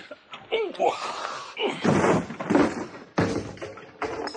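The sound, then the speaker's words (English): Strained grunts give way to heavy thuds and a splintering slam as a barred door is forced open by two people's shoulders, followed by a few scraping knocks. “Now, Watson, put your shoulder to this door with me.”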